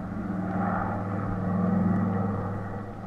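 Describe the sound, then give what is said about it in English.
A chartered propeller airplane takes off for Miami, its engines roaring steadily in a loud droning rumble that swells slightly in the middle and holds for a few seconds with no voices. “So he chartered a plane, and we took off for Miami.”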